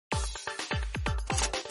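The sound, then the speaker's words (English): A steady series of about six vitamin water droplets plopping one after another, each a quick bloop that drops in pitch, evenly spaced with no voices. “This is the sound of vitamin water droplets.”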